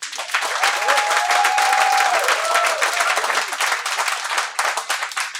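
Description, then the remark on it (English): A debate audience breaks into sustained applause, voting yes on whether democracy was existentially threatened by January 6th, dense rapid clapping holding steady for several seconds with a faint whistle or cheer rising briefly above it, then thinning slightly toward the end. “If you believe the answer is yes, could you please applaud?”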